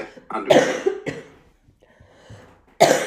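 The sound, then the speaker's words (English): Harsh coughs burst out in a short cluster, then a quieter pause with faint breathing before another loud cough hits at the end. “The cough's coming back.”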